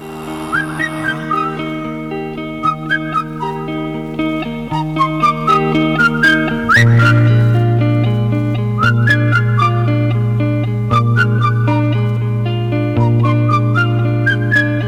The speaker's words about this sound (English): Get whistling now.